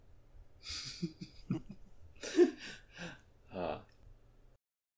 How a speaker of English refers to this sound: Here is my sneeze